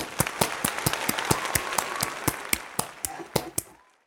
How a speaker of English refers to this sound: You know what? Do I think you deserve a round of applause? Ready? Whee!